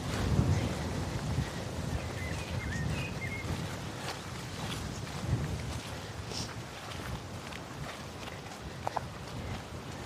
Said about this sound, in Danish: Det er rart, ligesom at mærke vinden på huden lige nu. Ja, det er rigtig dejligt at blive blæst lidt igennem.